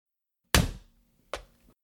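Two solid hammer blows land on a plastic Rocky VHS tape to break it, loud, spaced nearly a second apart, each a sharp thwack with a short hollow ring-out and no talking.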